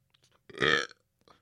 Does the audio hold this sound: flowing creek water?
no